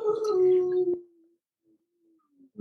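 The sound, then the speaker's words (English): A sleeping dog lets out a single soft, drawn-out howling whimper that slides downward in pitch and fades into a faint trailing whine, followed by near silence and a brief noise at the end. “My dog, sorry, you might need to cut that out. He's sleeping.”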